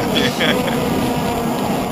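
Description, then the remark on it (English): A dense, steady drone of many vuvuzela horns blends into a continuous buzzing wash, like a stadium crowd, holding unbroken at a fairly loud level throughout. “I hear some fufuzelas, don't I?”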